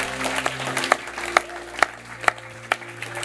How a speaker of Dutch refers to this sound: Most people clap at that point. De meeste mensen klappen op zo'n moment.